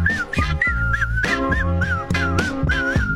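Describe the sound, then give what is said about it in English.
A bright, melodic whistled tune rises and falls in short repeating phrases over a loud backing track with a steady, punchy beat and bass. “Supposed to whistle at some point?”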